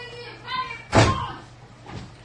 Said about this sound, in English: dropping his toy on the floor in the hall. That's an immensely heavy toy.